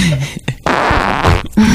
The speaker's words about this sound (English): How were those Cracker Barrel farts? Oh, awesome, dude.